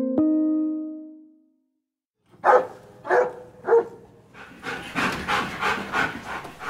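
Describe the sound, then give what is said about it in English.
A ringing chime fades out, then a male puppy gives three quick, high yips before breaking into fast, rhythmic panting. No one speaks. “Who can resist a puppy?”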